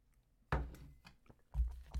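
Someone takes a sip of coffee: a soft slurp followed by a few wet swallowing and mouth clicks in an uneven rhythm, with no talking.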